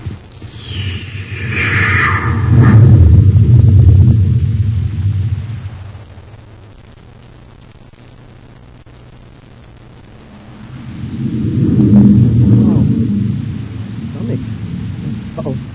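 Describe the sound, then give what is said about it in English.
A rocket ship blasts off after its rocket launching control is pressed: a deep, roaring roar swells loud for several seconds, sinks to a low steady drone, then surges up again before easing off. No one speaks. “Stand by for blastoff.”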